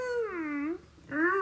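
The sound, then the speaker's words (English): A cat yowls agitatedly in two drawn-out, wavering cries, the first sliding downward in pitch, the second rising then falling after a brief pause, loud and with no talking over them. “Jesus, your cat is going nuts.”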